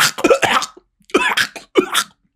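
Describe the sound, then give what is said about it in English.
A voice imitates a snake coughing and hacking: three harsh, raspy bursts in quick succession, fairly loud, with short gaps between them and no speech. “And he starts coughing and hacking.”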